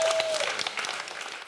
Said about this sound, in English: All right. One more big round of applause.